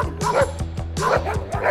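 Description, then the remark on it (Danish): A dog set on people by a group of bikers barks in quick, loud bursts, the sharp yapping barks coming in a steady rapid series with a slightly whiny, yipping edge. “Og de havde hunden, de pudsede på os.”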